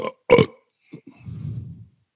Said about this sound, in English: Why would you burp on the mic just now? Because I wanted to see if you would know.